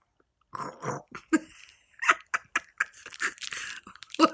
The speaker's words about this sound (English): What just happened there? Chew it properly.